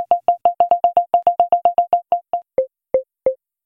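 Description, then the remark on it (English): A quick series of short electronic proximity-detection beeps repeats steadily while a person is close, then the tone drops to a lower pitch as the person crosses the default 6-foot threshold, and the beeps slow down, with longer gaps between the last few. No voices. “But as you cross over the threshold that you've set, which by default is 6 feet, it drops in pitch.”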